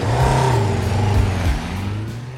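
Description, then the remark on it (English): A loud motorcycle engine revs, its pitch rising and falling through a couple of throttle bursts before settling into a steady, receding drone as the motorcycle speeds off. “just revving his motorcycle, and he just storms out and speeds off, and it's like, what a fucking child.”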